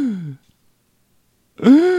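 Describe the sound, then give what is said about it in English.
Two sharp gasps of surprise, one voice after the other, separated by a brief moment of silence, the second gasp rising in pitch and slightly louder. “Oh my gosh. Double gasp.”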